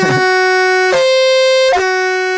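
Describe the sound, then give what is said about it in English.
A loud, blaring horn sound effect holds one steady, buzzy mid-pitched tone, restarting with a sharp hit three times in a row like repeated alarm blasts, with no voices. “And you're only doing horn and alarm sounds today.”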